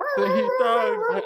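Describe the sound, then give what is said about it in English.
A dog dropped down a well hits the wall and lets out a loud, wavering howl broken into a few yelping cries, pitch rising and dipping over about a second with no other sounds around it. “I dropped the dog.”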